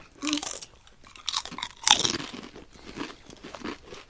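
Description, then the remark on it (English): Loud, crisp crunching of fish-flavoured chips, one each, being bitten and chewed, with a sharp snap near the middle followed by a run of smaller irregular crackles as the chewing continues. No one speaks. “Maybe can we grab a chip each and do a little cheers and give us a go?”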